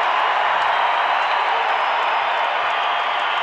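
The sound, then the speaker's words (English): A basketball arena crowd on their feet cheers during a Jazz game after a missed layup and a Rudy Gobert rebound, in a loud, steady roar that holds for the whole stretch, a dense wash of voices with no single speaker standing out. “Crowd on their feet.”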